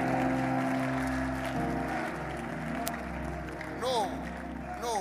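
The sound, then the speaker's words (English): An audience claps and cheers loudly and continuously as people clap their hands, scream and praise Jesus, with many voices shouting and whooping together in a dense wash of sound. “Come on, clap your hands and scream it and praise Jesus.”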